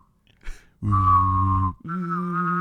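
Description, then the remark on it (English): A person hums a low buzzing note while whistling a clear higher tone over it, held steadily for about a second, then briefly breaks and resumes on a slightly different pitch, loud. “Now we only have like the one whistle at the end, but used to do a lot of, which is you humming and whistling at the same time.”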